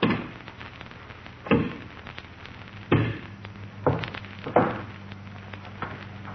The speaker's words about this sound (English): Alpha has log. Now, break it in half. Alpha, break it. Six log, and he's breaking it with his hand.